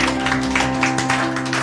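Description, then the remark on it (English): A church audience claps hands together for the Lord during a service, in a steady, dense patter of many overlapping claps, with sustained low tones humming underneath and no voices. “Somebody give the Lord a clap of hands.”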